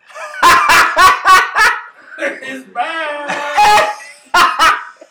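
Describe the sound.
A dog barks loudly in a quick run of four or five sharp barks, pauses, then lets out a few more, with a person speaking briefly in between.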